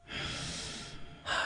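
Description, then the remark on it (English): A long, steady breath drawn in through the nose, broad and airy, followed by a brief pause and the start of another breath, with no talking. “It's nice to just breathe and know it's okay to hear the breathing sound. In through the nose.”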